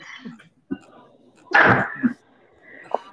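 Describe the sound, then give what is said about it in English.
A hand slaps down with a short, dull thump, followed by a loud burst of breathy vocal noise and a few softer knocks. “I heard the slap down.”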